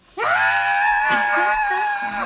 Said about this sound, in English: I'm screaming. You can't hear me now because we're back in the despair. But I'm no, screaming. He can hear you because you're right next to him.